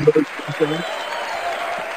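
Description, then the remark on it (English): An applause sound effect: a steady, dense wash of clapping that runs the whole two seconds at an even level, with a voice talking briefly over the first half. “Oh, we had the applause.”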